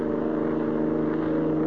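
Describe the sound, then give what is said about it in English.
A steady engine drone with a low, even hum, a car cruising at about 70 on a highway at night with little traffic, constant with no voices. “Say, you're certainly pushing this car along. Must be doing 70.”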